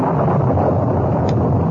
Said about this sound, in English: By the time they reached the horses, wind began to blow strongly and lightning crackled around them.